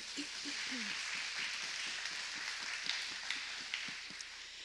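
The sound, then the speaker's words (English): A church audience applauds together, a steady wash of many hands clapping for several seconds, with a few scattered voices faintly underneath. “You can clap for that.”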